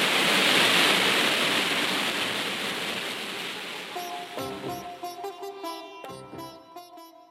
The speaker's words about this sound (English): All systems go, all systems green. 10, 9, 8, 7, 6, 5. Telemetry is good. 4, 3, 2. We have ignition. 1, 0. We have liftoff. We have liftoff.